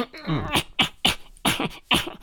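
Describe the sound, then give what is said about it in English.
A voice trails off into a fit of coughing: about five harsh, breathy coughs in an uneven rhythm, each a short, loud burst with brief gaps between. “You have a bit of a cough there.”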